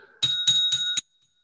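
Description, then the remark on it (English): A small bell rings four times in quick succession, bright, metallic and fairly loud, with a sustained ringing tone running through the strikes before it stops abruptly. “I have a wee bell.”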